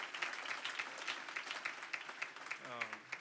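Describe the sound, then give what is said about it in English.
A crowd at a church youth rally applauds steadily for the local church family who made the rally possible, many hands clapping in a dense, crackling wash at fairly even loudness, with a brief voice or cheer rising through it near the end. “If we could give them a round of applause, they did an awesome job with this.”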